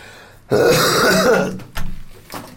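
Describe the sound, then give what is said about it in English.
A loud, real cough from a speaker who has hardly any voice left: one long, raspy, throaty hack lasting about a second, followed by two short, rougher coughs. No one speaks. “That was not a cough for dramatic effect. That was very much a real cough.”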